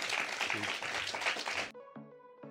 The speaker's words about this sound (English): Massive round of applause for Clive Lewis. Woo!